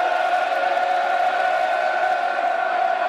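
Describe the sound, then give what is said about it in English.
A large football crowd cheers and chants for the Lions in a steady, unbroken roar, loud and dense throughout, with massed voices blending into a continuous wall of sound, at a floodlit English match against Sheffield United on a cool, damp day under dull grey skies. “Crowd getting behind the Lions, dear listeners.”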